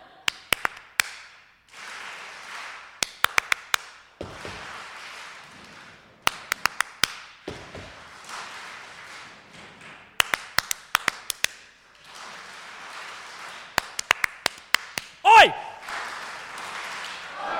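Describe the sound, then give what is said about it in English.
Groups of sharp hand claps come in short rhythmic bursts, each pattern answered by an audience clapping it back, acting out a Bible passage, with a soft murmur of voices between the rounds. “Give yourselves a round of applause now that you've learned how to clap.”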